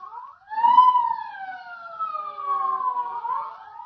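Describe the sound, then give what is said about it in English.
A state police car siren wails steadily, its pitch rising and slowly sliding down in a long sweep with harmonic overtones, loud, with no voices. “Sirens. State police. Militia. All roads blocked off.”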